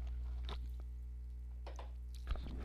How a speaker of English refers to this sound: I got to take a drink of my sparkling water.